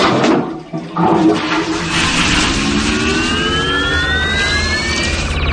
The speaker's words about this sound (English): Gentlemen, raise your seats. We're going to flush the chain on the count of three.